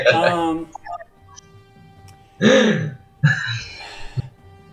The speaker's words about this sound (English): When he says Shavolak is a corrupted aspect, it's like just theatrical gasp from the cleric.